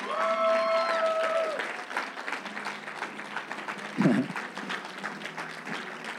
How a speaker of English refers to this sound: Let's clap it up. Let's celebrate them.